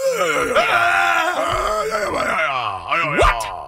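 A man lets out a loud, strained, angry scream, one continuous raw outburst for several seconds, ending in harsh swoops of rising and falling pitch.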